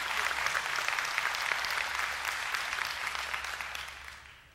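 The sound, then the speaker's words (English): Steady applause from a large crowd, dense and sustained with many hands clapping at once, then gradually fading out toward the end. “Now listen, it's a good time to clap.”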